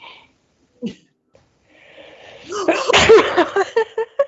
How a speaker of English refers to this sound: I sneezed. I'm sorry.